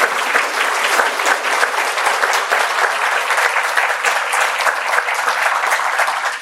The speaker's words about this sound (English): round of applause for you and your work.